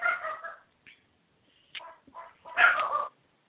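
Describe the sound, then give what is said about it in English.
Dogs at home bark and yip in a handful of irregular, excited bursts with brief pauses between them, moderately loud and slightly muffled. “My dogs are having a fit, so I had to go and intervene.”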